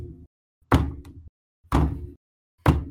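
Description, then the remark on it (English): Three heavy, booming footsteps land about a second apart in a slow, steady stride, each a loud thud with a deep low rumble, made by a large figure about the size of a door as he steps. No one speaks. “About the size of the door, guy standing there, and as he steps, you can hear the.”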